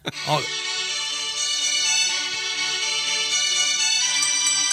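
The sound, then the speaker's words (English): A phone rings with an incoming call, a steady, tonal electronic ringtone playing continuously at moderate loudness, after a brief voice-like sound at the start. “Just give me a call real quick, and hopefully we have a signal inside these bunkers that we are in right now.”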